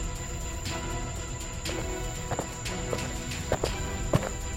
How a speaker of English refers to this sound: My heart leapt at the sounds of footsteps, and then promptly sunk when they stopped shy of getting good and close.